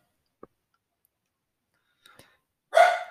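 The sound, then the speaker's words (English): A single loud, sharp dog bark near the end, as a neighbor woman taunts the dogs through a window, preceded by a few faint clicks and taps in otherwise quiet surroundings; no one speaks. “This our neighbor's home, this lady, she taunts the dogs through the window because she thinks like she's connecting with them or something.”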